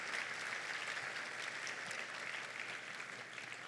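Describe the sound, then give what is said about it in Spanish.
A church audience claps steadily in a round of applause for Jesus during a sermon, a dense, sustained wash of many hands applauding together at moderate volume, with no speech over it. “Go ahead and give Jesus a round of applause.”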